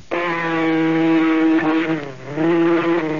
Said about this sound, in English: Gotcha. Now that you got rid of the mosquito... Darn mosquito really bit me.